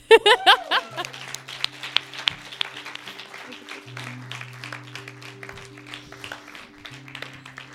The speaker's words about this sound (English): Thank you for those of you who stood. The Lord, he's here right now. You can clap,